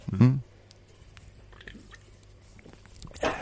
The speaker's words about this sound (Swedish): Eller vänta, jag ska ta en klunk.